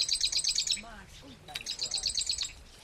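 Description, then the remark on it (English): Marsh wren chip calls, from a small bird about the size of a chickadee, pour out in two fast, high-pitched chattering bursts, separated by a brief pause filled with softer, lower gliding notes. “I've never seen a marsh wren, but I can hear it.”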